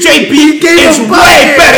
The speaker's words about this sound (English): I don't know. Like, I'm screaming into the mic right now. I just need to relax.